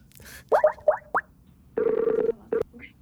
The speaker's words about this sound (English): Now let's call up Matt. We got to get him on the phone.